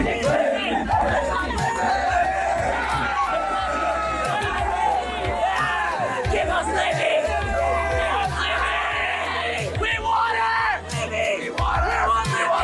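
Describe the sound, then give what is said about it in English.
A dense crowd of fans shouts and screams continuously for Olivia Dunne, a Louisiana State University gymnast, many excited voices layered into a loud, sustained roar with overlapping yells and high shrieks rising throughout. “That group of part of the future of America were screaming for Olivia Dunne, a gymnast at Louisiana State University.”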